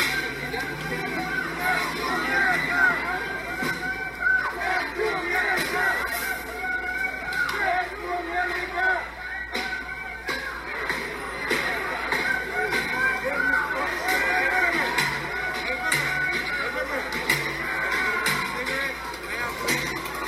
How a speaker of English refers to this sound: I'm trying to play this clip of them shouting death to America.